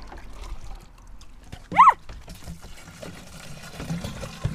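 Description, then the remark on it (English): Water is poured and splashes steadily onto plants as they are watered, a soft continuous trickle, briefly interrupted by a short, sharp squeak or yelp partway through. “Just pouring water in”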